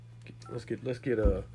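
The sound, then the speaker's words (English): A quick run of telephone keypad dialing tones, several short beeps in a rapid rhythm over a low steady hum, moderately loud. “Let's get the superhuman on the phone.”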